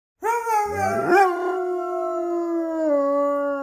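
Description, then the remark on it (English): A dog lets out a long, sustained howl, fairly loud, while its owner, a man, briefly howls along in imitation. The howl rises, then holds a steady, wavering tone. “who sent the sound of his dog howling and himself howling with his dog, which I thought is an awesome seven sound.”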